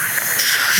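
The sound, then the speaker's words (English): A steady, airy hiss of a pressurized spray foaming like shaving cream, a tinkle buffer spray used in a toilet to mask noise. It holds even and fairly loud for under a second with no voices. “But the negative thing about you spraying like a shaving cream basically in the toilet is you're going to hear that too.”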